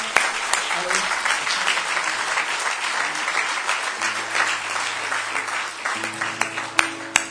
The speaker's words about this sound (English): Let's just give the Lord a hand clap of praise.